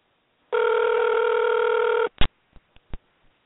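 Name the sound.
telephone ringing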